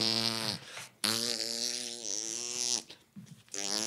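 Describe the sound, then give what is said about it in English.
A loud, buzzy fart sound rumbles in several drawn-out bursts, its pitch wobbling up and down, with short gaps between them and no talking over it. “Dude, if I had a Ring doorbell, oh my, I'm farting and shit.”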